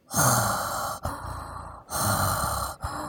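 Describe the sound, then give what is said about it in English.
A person mimics heavy, raspy breathing through a mask, with four long, loud inhales and exhales in a steady rhythm, close to the microphone, with no talking. “So, now we're POV, walking around, breathing in a mask.”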